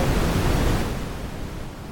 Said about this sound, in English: Loud. Is that just white noise?